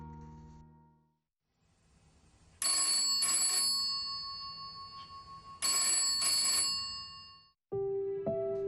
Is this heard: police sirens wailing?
no